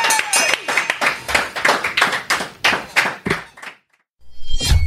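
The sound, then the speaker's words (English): A round of applause at the end of an interview on the Map Around Show, at its studios at Networkspace in Johannesburg: dense, rapid clapping from a small group, fairly loud and steady for about four seconds, then it cuts off into a brief silence before another sound begins. “Round of applause, please, guys.”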